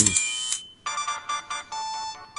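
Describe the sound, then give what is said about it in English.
A short, bright MIDI-style electronic startup jingle plays as an LG device turns on: a sustained synth chord followed by a quick run of chiming notes in an upbeat rhythm, with no one talking. “that little, like, MIDI noise, like, you know, like the Final Fantasy-esque winning”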